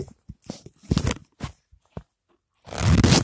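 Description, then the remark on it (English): A jeans zipper rasps as a man unzips his jeans to take them off: several short, scratchy bursts with brief pauses, then one longer, louder ripping pull at the end. No one speaks. “That was sound of jean zipper.”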